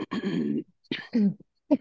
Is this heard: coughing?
yes